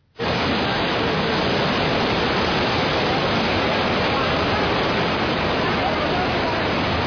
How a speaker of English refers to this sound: And this is someone's video of the Jordan River at flood stage. Look at this.